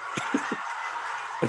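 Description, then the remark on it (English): A person imitates a duck, letting out three quick, nasal quacks in a row, then one more after a short pause, over a steady hum of background noise. “For 2 hours, I had this strip club going crazy, just doing the duck and shit.”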